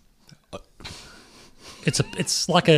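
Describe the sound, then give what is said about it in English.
A quiz contestant breathes heavily during a trivia match: a sharp intake, a long rushing breath, then several quick, voiced huffs and pants growing louder toward the end. “he's breathing heavy because he sees a sense as an opportunity here to take the match away from”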